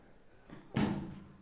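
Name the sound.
door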